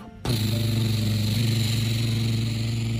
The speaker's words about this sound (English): As the helicopter zoomed over the mountains, right over the bad guys, they started to dump all ton of water on top of the volcano.